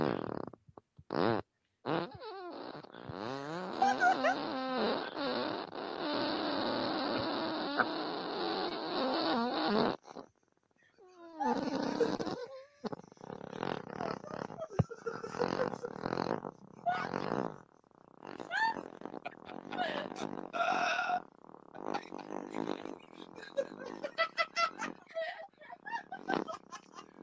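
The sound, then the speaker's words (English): A 33-second fart: long, loud and rasping with a buzzy, wavering pitch, holding steady for several seconds, then breaking into a ragged series of sputtering, squeaky bursts that drag on until the end. “It's a 33-second fart.”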